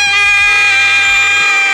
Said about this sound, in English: Somebody shut that motherfucking baby up. Lady, we're in Walmart. I don't want to hear that motherfucking shit. Shut that goddamn baby up.